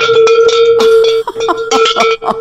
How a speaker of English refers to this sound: You talk and I'll get my dinner bell. Okay, here it is.